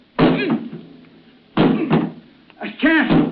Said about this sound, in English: What is it? What's wrong? The door. I can't open it. It's jammed. Well, try breaking it down.